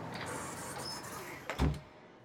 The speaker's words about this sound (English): I walked up the wet steps, and a security guard opened the tinted glass door for me.